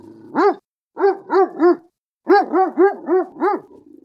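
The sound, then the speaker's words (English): A dog barks loudly from a window at an unknown dog in the yard, in quick bursts: one bark, then three in a row, a pause, and a rapid run of six sharp barks. “I barked as loud as I could.”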